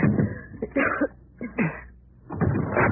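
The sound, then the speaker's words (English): Several heavy blows thud and crash against a wooden door in quick succession as people smash their way out, followed by a longer burst of cracking and banging as it gives way; no voices. “Hold the flash on the door. Maybe we can smash our way out.”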